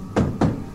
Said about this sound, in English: Are they threatening you? Two knocks.